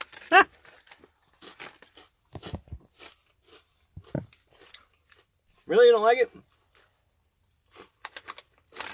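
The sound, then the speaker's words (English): Crunchy, crispy cheese snacks being chewed, with scattered crisp bites and crackles, broken up by brief bits of conversation and a short drawn-out vocal exclamation. “They're crunchy, crispy.”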